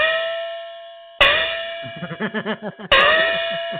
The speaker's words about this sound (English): That's all we get. We get the Christmas gong.